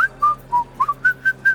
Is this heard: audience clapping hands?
no